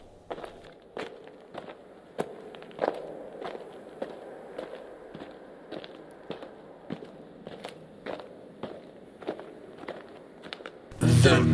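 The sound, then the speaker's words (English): Steady footsteps descend a creaky set of stairs as someone goes to fetch news stories, about twenty thuds at an even pace with faint creaks between them. A voice starts talking abruptly at the very end. “I'm going to go down the creaky set of stairs and get the news stories for the news segment coming up next.”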